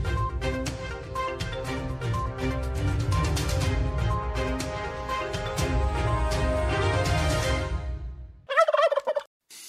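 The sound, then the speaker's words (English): A flock of turkeys gobbles loudly and continuously for about eight seconds in a dense, rapid warbling chorus, followed by one short, higher-pitched gobble after a brief dip. “Gobble, gobble.”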